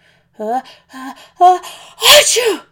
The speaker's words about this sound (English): The sneeze burst out of my nose, followed by lots of spit and snot. Whoosh!